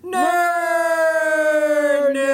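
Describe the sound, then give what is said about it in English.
A loud siren-like wail holds a steady, rich tone for about two seconds, sliding slowly downward in pitch before cutting off, with nothing else around it. “Well, James, it's time that we put our ears to the speakers and listen to those sirens, because it's time for what?”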